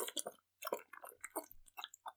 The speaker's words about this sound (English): I'm trying to drink my water bottle as loud as physically possible.